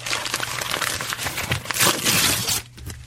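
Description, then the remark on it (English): Paper crinkles and rustles continuously as a present is unwrapped, with dense crackling bursts swelling louder toward the end before stopping abruptly; no voices. “And I also, I actually brought a present for you in this.”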